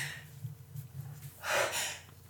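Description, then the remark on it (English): After a quiet stretch with a low, steady hum, a single sneeze bursts out: a sudden breathy, hissing blast that is the loudest moment, then trails off into soft breathing. “I have to sneeze again.”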